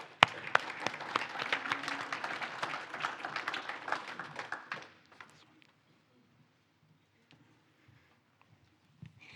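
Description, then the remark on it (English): An audience claps together in a dense burst of applause for about five seconds. The clapping then cuts off sharply, leaving near silence with a few faint scattered sounds. “We should clap.”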